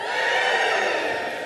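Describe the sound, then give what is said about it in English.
A large church audience whoops, cheers and hollers in a steady, dense roar of overlapping voices, loud and sustained with high-pitched hollers rising above the din. “It's okay to whoop, to cheer, to holler.”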